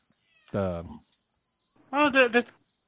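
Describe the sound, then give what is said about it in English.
A constant high-pitched insect drone fills a nighttime jungle, broken by two loud, harmonic animal calls, one short and one longer and wavering, like night birds calling. “But mercilessly, the sounds of the jungle Gomez. Overwhelm most of the other sounds, the other animals in the forest.”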